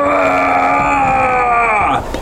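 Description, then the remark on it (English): A person voices a loud, sustained guttural scream imitating the rage of a barbarian orc character, holding a strained, harmonic-rich roar steadily for about two seconds before it breaks off abruptly. “You see the orc scream.”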